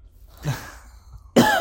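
A soft throaty sound rises briefly, then a woman lets out a sharp, loud cough near the end, with no talking.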